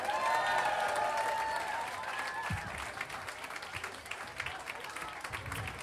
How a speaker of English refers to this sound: Thank you so much for your applause, for your attention.